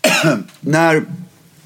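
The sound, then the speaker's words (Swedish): Two loud coughs from one person, a short pause between them, the second a bit throatier, followed by quiet room tone. “Förlåt, jag ska hosta.”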